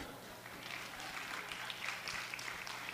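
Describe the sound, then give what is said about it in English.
Light, scattered hand clapping from an audience in a church, a handful of sparse claps spread over a few seconds against a steady crowd murmur, with no one speaking. “Look at, I get one hand clap for that.”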